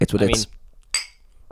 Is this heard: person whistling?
no